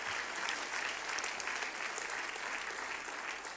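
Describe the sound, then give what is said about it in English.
A church audience claps their hands to the Lord in praise, sustained, dense applause, many overlapping claps forming a steady, bright wash of sound with no pauses. “Clap your hands one more time to the Lord and give him praise, because God is good.”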